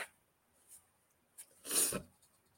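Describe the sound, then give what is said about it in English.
Someone blows their nose: a couple of faint sniffs, then one loud, rough, breathy blast lasting about a quarter second, with no talking. “Pardon me as I blow my nose.”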